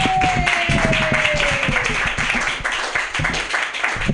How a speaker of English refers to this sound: So start clapping right now for